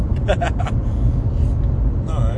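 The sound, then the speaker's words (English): A lowrider car rumbles past, its deep, steady engine drone filling the whole stretch, with brief bursts of people talking over it. “What the fuck was that? That car was a low rider.”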